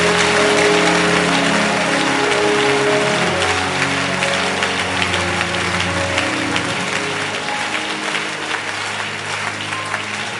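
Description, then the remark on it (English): A crowd claps steadily and loudly for about ten seconds at a speaker's call to clap their hands and chase away death from their families. It is a dense wash of many hands with faint tonal music or hum underneath, tapering only slightly toward the end. “Clap your hands and chase away death from your family.”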